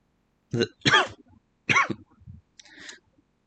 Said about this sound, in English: Sorry, I'm just coughing a little bit. Yeah, I can hear that. I know you can hear that.